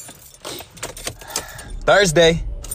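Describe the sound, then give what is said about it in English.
Keys jingle and clatter in short bursts as someone climbs into a car in a quiet neighborhood in the morning, followed by a brief spoken voice near the end. “Get in the car real quick.”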